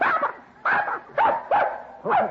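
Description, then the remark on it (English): Six puppies yap and whimper in a quick series of five high-pitched bursts, fairly loud, with short gaps between each cry and no voices. “Puppies, darling. Yes, sir. Six of them.”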